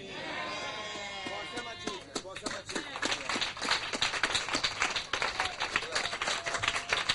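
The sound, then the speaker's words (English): An audience claps together, a dense run of sharp hand claps building to a steady, lively patter. At the start, raised voices can be heard before the clapping takes over. “If you are not clapping, you are a suspect.”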